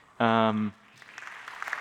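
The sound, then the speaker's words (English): A short burst of a voice is followed by soft, scattered audience applause for the speaker's wife, mother-in-law and mother on Mother's Day. The applause gradually builds, with many light claps blending into a steady patter. “You can clap.”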